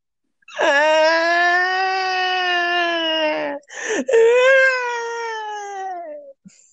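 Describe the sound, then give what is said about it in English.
A voice imitates loud bawling: two long, wailing cries with strong harmonics, the first held steady for about three seconds, a brief gasping break, then a second wail that slowly falls in pitch. “And just starts bawling her eyes out.”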